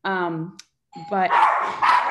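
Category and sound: animal, dogs barking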